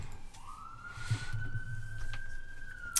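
A loud siren wails in one long, sustained tone that sweeps up slightly and then holds steady, with a low rumbling background underneath and no voices.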